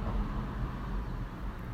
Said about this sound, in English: So, yeah, that is sometimes a bit annoying, but yeah, so sometimes when I say car, it's because a car is passing by and it makes noise. I think the car felt that it was summoned, so yeah, it came.